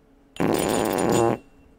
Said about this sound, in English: Does it fart like a real ass? It's worse.